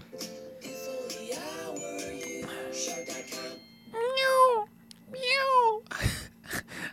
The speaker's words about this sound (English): What the fuck was that? What was that? It's doing like a cat, like a kitten, like we have, like having a mascot.